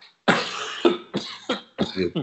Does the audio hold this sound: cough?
yes